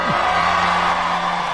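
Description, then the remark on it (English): A large crowd at Donald Trump's final midterm rally in Ohio on Monday night cheers loudly in a dense, continuous roar, with a sustained whoop riding on top throughout the short burst of applause. “That was Donald Trump before a crowd in Ohio on Monday night where he was holding his final rally of the midterm season to bolster, theoretically, Republican Senate candidate J.D.”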